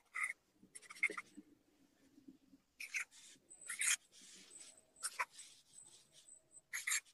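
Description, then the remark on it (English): A pencil scratches across paper in quick, irregular bursts of strokes during a timed drawing round, fairly quiet, with short pauses between flurries and no talking. “All right, pencils down.”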